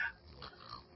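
A voice imitates the exaggerated, apnea-like snoring of a heavy smoker: a rough, raspy snort stretched over about a second, with a noisy, grunting texture and no speech alongside.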